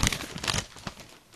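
paper being rustled

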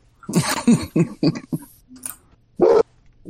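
dog barking outside

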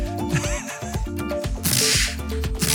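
whip crack sound effect

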